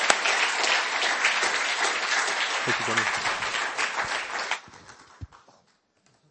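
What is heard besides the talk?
audience applause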